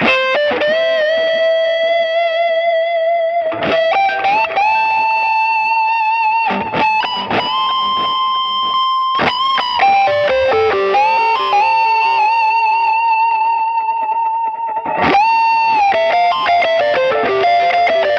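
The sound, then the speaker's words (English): An electric guitar played through a Dispatch Master delay and reverb pedal plays sustained melodic notes and bends, drenched in delay and reverb so each phrase echoes and smears into a lush wash, loud and continuous with no voices. “Time favorite pedals is the Dispatch Master. Amazing delay reverb combo, right?”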